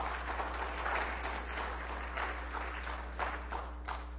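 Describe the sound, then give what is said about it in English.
A church audience applauds with a dense, steady wash of many hands clapping, fairly loud and sustained for several seconds over a low constant hum, with no voices rising above it. “Give our guys a good hand clap, would you please?”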